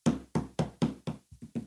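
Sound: knocking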